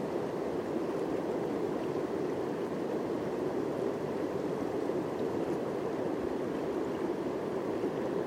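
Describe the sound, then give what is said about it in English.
Steady, continuous rushing of flowing water, like a stream or river, outdoors in warm sun, filling the scene at a constant moderate level with no voices and no breaks throughout. “The sounds of the water, even the traffic going by occasionally, to let it all in.”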